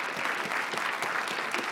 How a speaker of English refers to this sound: But if you welcome these folks into covenant membership, will you just give a round of applause? How about that? Let's do that.